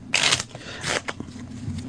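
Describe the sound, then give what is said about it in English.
A deck of playing cards being shuffled one more time before a card trick: two crisp, papery riffling bursts followed by a few short card flicks, with no one talking. “Shuffle it one more time just so no one thinks that we're fucking around here.”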